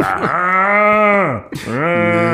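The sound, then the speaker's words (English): A cow moos twice, loud, each call long and drawn out with a rising-then-falling pitch that sounds eerily like a human voice, a brief pause between them. “Sometimes them mugs be sounding like humans.”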